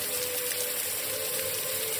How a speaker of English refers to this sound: hop in the shower before bed. The water burns at first, but in a way that feels like an itch being scratched, pain which quickly turns to euphoric relief.